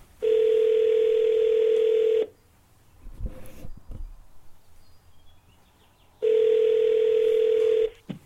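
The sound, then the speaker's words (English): A loud, steady telephone dial tone hums for about two seconds as a call is placed to a guest in a different time zone, gives way to a quieter stretch of faint clicks and handling noise, then returns for another long tone. “I should call him now.”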